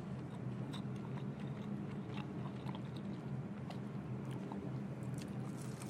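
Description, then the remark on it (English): Biting and chewing of a spicy fried chicken wing, with scattered wet crunches and smacks over a steady low background rumble, no one talking. “And the reason he's eating the wing because everything else was gone.”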